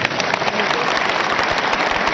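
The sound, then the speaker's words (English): A crowd claps loudly and steadily throughout, the dense patter of many hands filling the space with continuous applause. “Clap for her.”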